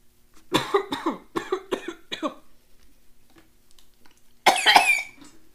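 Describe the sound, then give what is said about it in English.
A fit of harsh, rasping coughs, about five in quick succession, followed by a short quiet pause and then one more loud, strained cough. No one speaks. “Yes, I have a terrible cough.”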